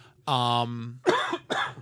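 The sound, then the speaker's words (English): A person coughs twice in quick succession, fairly loud, the harsh bursts following a brief throaty vocal sound. “I think my cough suppressant must have worn off.”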